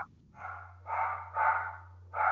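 Dogs in the background bark in a quick series of four rough, mid-pitched bursts over a couple of seconds, with a steady low hum running underneath and no one talking.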